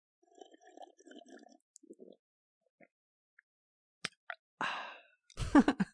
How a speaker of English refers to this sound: Yeah, and not to mention ASMR starting right now as I am about to drink a glass of juice. Let's listen closely. Ready?